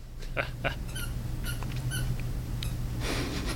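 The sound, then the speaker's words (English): A happy male dog squeaks a loud squeaker toy in a quick, uneven series of sharp, high-pitched squeals, about seven or eight in all, over a steady low hum with no talking. “the dog just picked up a loud squeaker toy, so we'll see if it picks up or not.”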